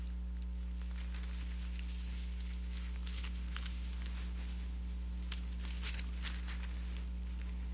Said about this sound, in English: I love to hear those pages turn, by the way. That's a beautiful sound.